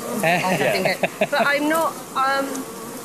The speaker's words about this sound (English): Can I ask how you guys feel surrounded by bees so far? No, cloud of bees? Not at all worried at all.